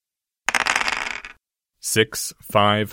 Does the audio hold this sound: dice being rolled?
yes